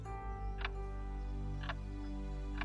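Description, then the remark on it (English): A clock handmade in Glasgow, Scotland, in the late 1700s ticks slowly and steadily, three crisp ticks about a second apart, over a constant low mechanical hum with no voices. “Next to the clock is a small sign offering you the information you were wondering about this magnificent clock.”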